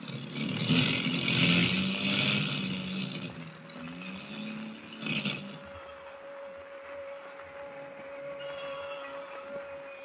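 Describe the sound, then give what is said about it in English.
Airplane motors of a plane dropping lower in a storm drone roughly and unevenly, sputtering and misfiring, loudest in the first half, with a sharp surge midway and a steady hum running underneath throughout. “The motors are missing worse than ever.”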